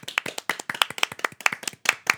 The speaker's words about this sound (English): All right, well, this carries us into the bit where we applaud